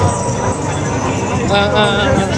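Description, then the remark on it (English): A large audience claps and cheers loudly for a couple of seconds for Pierce Secondary School, a dense, continuous roar of applause mixed with shouting voices, steady throughout. “Round of applause for Pierce Secondary School!”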